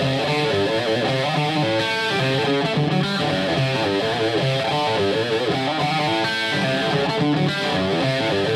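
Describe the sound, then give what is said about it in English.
A loud, saturated electric guitar with a 1980s-style distorted tone plays a continuous riff with a thick, crunchy sound, heavy midrange and sustained harmonics, filling the whole stretch without any voices. “To more of a 1980s distorted guitar sound.”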